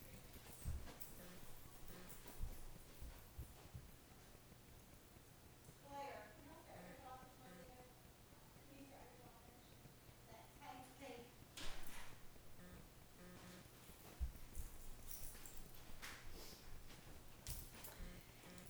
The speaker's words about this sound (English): Let me go shut the door.